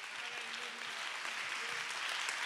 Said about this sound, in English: Amen. Oh, let's clap our hands and give God the praise.